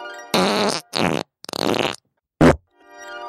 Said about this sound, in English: bring both farts back just right now, just so we could hear him again